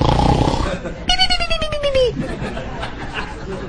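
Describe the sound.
A voice does an exaggerated, cartoonish Three Stooges-style snore imitation: a raspy, noisy inhale, then a fluttering, high whistle that slides downward for about a second, with murmuring voices behind it.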